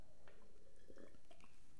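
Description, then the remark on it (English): Someone takes a sip of a drink, with a few faint, wet liquid sounds and soft slurps in short bursts and no talking. “Let me take a sip of this, right?”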